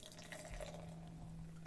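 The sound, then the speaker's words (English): Pale red beer glugs and splashes steadily into a glass, a continuous liquid pour with a faint low hum underneath and no one speaking, forming a khaki-colored head with lots of tiny bubbles. “And the pour.”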